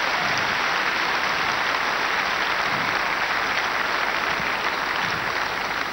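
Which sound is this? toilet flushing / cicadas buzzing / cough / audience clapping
audience clapping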